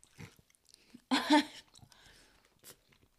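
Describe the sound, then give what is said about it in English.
Wet chewing and mouth noises as a person chews a whole cupcake put in the mouth in one go, with a loud burst of crunchy munching midway, followed by softer smacking and small clicks. “You're going to be there for a good half an hour, you chewing that, you know?”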